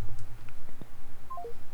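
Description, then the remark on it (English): Three quick telephone keypad tones beep in a short descending run near the end, clear over a low steady hum, with no one speaking. “That's a weird phone number.”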